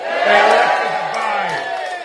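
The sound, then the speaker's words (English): A large crowd roars and cheers in a loud, sustained wall of voices, with rising whoops and shouts layered over the dense, continuous din for about two seconds. “Show me some spirits.”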